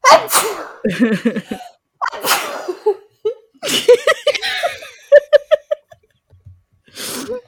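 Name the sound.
repeated sneezing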